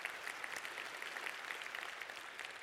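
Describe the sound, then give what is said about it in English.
An audience claps steadily, a dense, even patter of many hands with no voices cutting through, holding at a moderate level for the whole stretch. “What I want you to, yeah, you can applaud that.”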